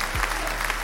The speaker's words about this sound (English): Round of applause for Denver, Colorado.